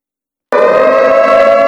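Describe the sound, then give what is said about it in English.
A loud civil defense siren sound effect cuts in abruptly after a half-second of silence, holding a steady, harmonically rich wail with no voices over it. “It's guarantee time. Let the sirens sound.”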